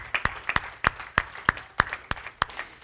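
A church audience applauds, with sharp, evenly spaced claps standing out in a steady rhythm over a softer, continuous wash of clapping, moderately loud throughout.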